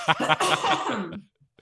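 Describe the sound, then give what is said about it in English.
A fairly loud fit of coughing: a couple of sharp rasping bursts that run into a rough, breathy stretch, then fade out with a faint click at the end. “I'm gonna have to cough, sorry.”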